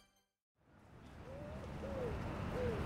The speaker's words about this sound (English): We're at Washington Square Park on a warm February day. Pigeons are cooing, dogs are barking, there's a guy playing piano, lots of people just walking around and talking.